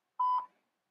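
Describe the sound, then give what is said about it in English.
A single short electronic beep of a voicemail recording tone, a steady mid-pitched tone lasting about a quarter second, clear, followed by silence. “Sounds like the tone went off, but I don't hear him leaving a message now.”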